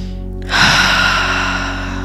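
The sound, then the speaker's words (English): A single deep, audible breath taken during a guided meditation, a soft airy rush that swells quickly and then slowly trails off, with no talking. “So just taking a few deep breaths, maybe breathing into your heart.”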